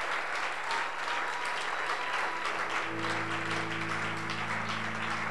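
Dense, sustained applause from a large crowd fills the space, steady and loud throughout, with a low sustained tone, like an organ or keyboard chord, entering beneath it partway through.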